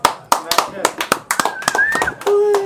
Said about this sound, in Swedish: Ja men alltså absolut, hatten av för er. Och en applåd framförallt.